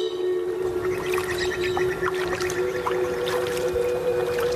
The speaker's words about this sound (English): As the water is diverted to irrigate crops, the pitch of Meredith's sonification of the flow data drops.